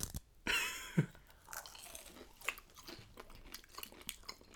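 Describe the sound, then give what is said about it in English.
Crunchy fried food being chewed: a loud opening crunch, followed by a steady run of smaller, crackly bites and mouth clicks. No one speaks. “This is so thick. Can you hear that?”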